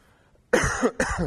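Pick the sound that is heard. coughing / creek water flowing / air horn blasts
coughing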